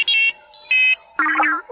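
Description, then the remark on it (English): The astromech droid R2-D2 chatters in droid speak: a quick run of bright electronic beeps hopping between high pitches, then a warbling, chirpy trill that wobbles up and down before fading. Loud and clear, with no talking. “Droid speak is how astromechs and many other droids communicate.”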